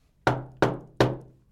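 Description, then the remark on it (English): Three firm knocks on a wooden door in a steady, evenly spaced rhythm, each with a hollow, resonant thud that rings out briefly. Fairly loud, with no voices. “I turn around like, who the fuck's that at the door?”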